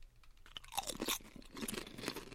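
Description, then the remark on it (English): Crisp, crackling crunches of someone biting into a sweet and salty potato chip, followed by several rapid chewing crunches in an irregular rhythm, fairly loud with no talking. “This is definitely a sweet and salty chip.”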